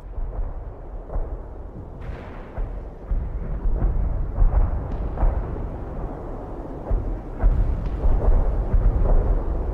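Distant artillery fire rolls on like continuous thunder, a deep low rumble punctuated by repeated muffled booms, steady and far off with no voices.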